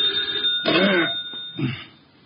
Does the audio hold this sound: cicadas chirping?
no